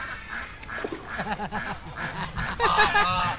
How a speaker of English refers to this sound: They're the ducks.